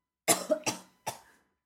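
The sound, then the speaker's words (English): Three harsh coughs in quick succession, fairly loud, the first two running together and the third after a short pause, with no talking around them. “I held my cough until you were done.”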